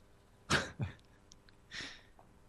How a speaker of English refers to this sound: Ooh, what was that? Cough. Did some brains come out in that cough? Oh, that was nothing.